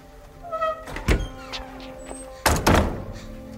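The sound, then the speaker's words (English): A door swings shut with a solid thunk, preceded by a lighter knock and faint creaking, then quiet. No talking. “Close the door, please.”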